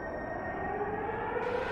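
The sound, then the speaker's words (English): A sustained wail of emergency sirens, steady tones layered over a dense, rumbling wash of noise, holding at an even level throughout with no voices present. “Air horns. Emergency sirens.”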